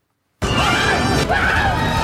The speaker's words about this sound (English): So I've put the two together back to back. This is the original sound from The Last Jedi compared to the scream from Solo, but with the pitch raised just a little bit.